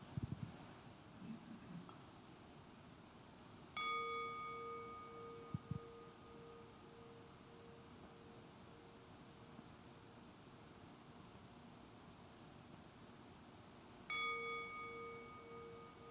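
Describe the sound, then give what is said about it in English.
A meditation bell is struck twice, about ten seconds apart, each strike ringing out with bright overtones and slowly fading over a soft, steady hiss of background noise. “So I want to invite you to just, along with me, listen to the sound of this bell.”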